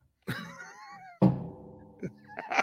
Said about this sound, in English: Set your drink down a little harder